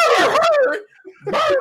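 A dog barks twice, a long, drawn-out, tonal bark followed by a shorter one after a brief pause, loud and clear with no one talking.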